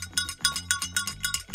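A rapid series of bright metallic bell dings from the Santos Tour Down Under, about a dozen strikes in quick succession with a ringing high tone and steady rhythm, no voices present.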